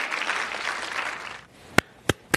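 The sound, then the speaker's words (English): A crowd applauds a speaker's line that no one should be in federal prison for the mere possession of marijuana, a dense, steady patter of clapping that cuts off abruptly, followed by a few sharp, isolated claps spaced apart. “But it's a cheap applause line, and it sounds good, right?”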